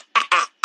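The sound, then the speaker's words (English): Three quick, rough throat-clearing bursts in a choppy rhythm, fairly loud, with short pauses between them and no talking. “When you send me a pic of that Wayne, I need to be like, let me clear my throat.”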